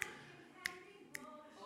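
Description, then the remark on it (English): Three crisp finger snaps at a steady, unhurried pace as a speaker keeps time for a song, inviting the audience to sing along; each a short bright click standing out clearly over a faint room hum, with no one speaking. “Like, if I kind of snap my fingers?”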